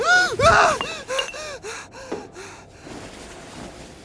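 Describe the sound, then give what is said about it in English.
A teenage boy of about 17 or 18, lying among pillows, lets out a sharp, loud gasp as he startles awake, followed by a series of short, rasping, diminishing breaths that fade into quiet, shaky breathing, with no talking. “Suddenly his back arches, and he lets out a gasp as he startles awake.”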